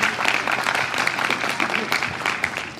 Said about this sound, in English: Can we have a round of applause for our panellists?